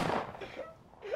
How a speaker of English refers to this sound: Those were real gunshots.